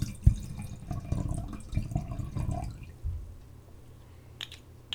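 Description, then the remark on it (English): Sweet Riesling wine pours into a glass with a steady gurgling splash for a few seconds, then trails off into quiet, followed by a couple of faint clinks near the end. “So for my ASMR, let's pour up.”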